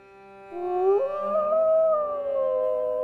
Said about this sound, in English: Soon the banging stopped, and the man turned away from the door, and at the same time, a howl was heard in the distance.